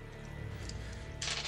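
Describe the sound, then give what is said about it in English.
A steady low hum, then a sudden bright clatter of dice, including purple dice, being rolled for a hard discipline check in a tabletop game near the end, fairly loud over the background, with no one talking. “Okay, that's not good that's not good for the purple dice.”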